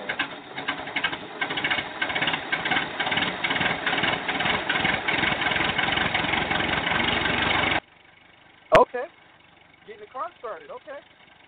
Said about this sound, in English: That's what they sound like, an old car trying to get started.